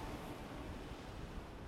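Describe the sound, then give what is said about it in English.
A steady, dense wash of sea surf noise fills the short stretch, like waves churning and breaking, with a constant rumbling roar and no voices. “The silver cutlass falls out of the man's hand onto the deck of the ship, and then he is wrenched backwards into the sea and disappears under the crashing waves.”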